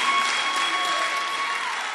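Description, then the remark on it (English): An audience claps steadily, a dense wash of many hands applauding at an even level for the full two seconds, with no voices standing out. “Look, clap for me.”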